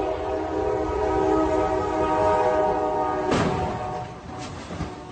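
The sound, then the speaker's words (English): A huge freight train's horn blares loudly for several seconds over a rumbling engine, then a sudden violent crash rings out as it strikes an 18-wheeler truck stuck on the tracks, followed by a second crunching impact. “Moments later, this train barrels through, huge freight train, takes apart this huge 18-wheeler. This is what it sounded like.”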